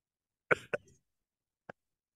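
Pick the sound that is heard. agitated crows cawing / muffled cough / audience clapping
muffled cough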